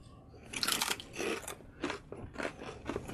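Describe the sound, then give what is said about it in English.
Loud, crisp crunching of Zapp's Cajun Dill Gator-tator kettle-style potato chips being chewed, several bright crackly bursts in an uneven rhythm with short pauses between bites, and no talking. “So we're going to go with Cajun Dill Gator-tator kettle style chips from Zapp's. So let's give these a shot.”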